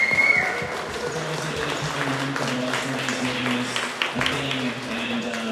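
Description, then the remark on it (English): A crowd breaks into a sustained round of applause for the volunteers and organizer team, many hands clapping in a dense, steady wash at an even loudness, with a low murmur of voices beneath it. “I'd just like to give a quick round of applause to all of the volunteers and the rest of the organizer team that's been here to make this happen.”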